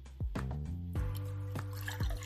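Water being poured, fairly quiet, with a steady liquid stream broken by several gurgling, drip-like plops over a couple of seconds. No one speaks.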